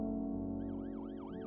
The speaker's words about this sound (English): The sound of an ambulance wheeling into the receiving room below shatters your train of thought.